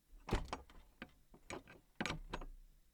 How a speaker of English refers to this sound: Upon opening the door,